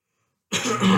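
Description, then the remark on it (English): After a moment of silence, a single loud, rough cough bursts out and rasps on until the end, with no talking. “Smoke and cough. That's what it is.”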